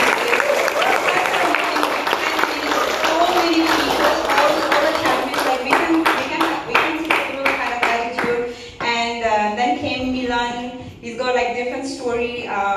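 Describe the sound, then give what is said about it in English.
An audience applauds with steady, dense clapping that lasts about twelve seconds, while voices call out over it, growing more noticeable toward the end. “So can we give a big round of applause?”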